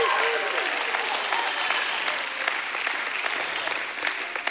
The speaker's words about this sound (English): Oh, come on, we can give God a hand clap and a shout of praise.